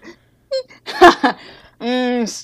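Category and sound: vocal imitation, voice imitating snoring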